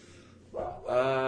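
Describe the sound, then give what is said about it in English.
A dog named Scotia barks: a short bark followed by a louder, drawn-out one with a whining, tonal edge, over a faint background hum. “Besides Scotia barking her head off.”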